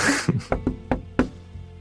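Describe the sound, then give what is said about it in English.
Knocking on the wooden door of a dark building: five firm raps at an uneven pace following a brief rustling noise, with a low background hum and no voices. “I have knocked on the door and peered in and seeing if I can see anything, if it's dark inside.”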